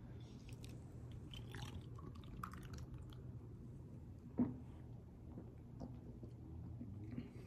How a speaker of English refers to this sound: But I'm actually drinking this beer like I'm thirsty.